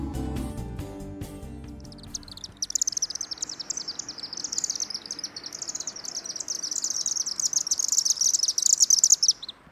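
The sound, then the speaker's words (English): After a brief musical sting, a bird calls continuously in rapid, high-pitched chirps and trills, fairly loud, with steady insect-like buzzing in the background. “Did you recognize that bird call?”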